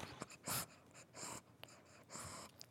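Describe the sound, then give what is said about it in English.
Zoro, a small one-eyed pug sitting in someone's lap, breathes heavily and noisily, with a series of raspy, snorting huffs in an irregular rhythm and no talking. “I don't know if you can hear Zoro breathing there. He's currently breathing, sitting in my lap.”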